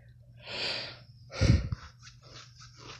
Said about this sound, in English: I'm yawning.